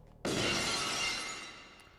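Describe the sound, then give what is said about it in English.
A loud burst of shattering glass, a wrestler's entrance sound effect, erupts suddenly, its bright crash spreading into a long, glittering tail of falling shards that slowly fades over a couple of seconds. “When the glass hits, that's your ass.”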